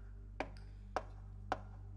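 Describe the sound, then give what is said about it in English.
Three sharp knocks on a door, evenly spaced about half a second apart, each a crisp single rap over a steady low hum, with no voices. “Open the door and let me in. He's knocking.”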